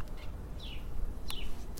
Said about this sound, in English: I'm back in Brooklyn. I started the episode in Budapest. Now, by the time I was done, here we are, back in Brooklyn. I'm back in my apartment. I'm looking in the backyard. Listen, you can hear the birds.